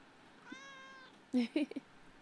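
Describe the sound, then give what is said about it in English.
A pet cat named Tara Jr. Jr. gives one drawn-out, tonal meow lasting about half a second, followed by a few short, louder vocal bursts that sound like a person reacting. “I love this cat.”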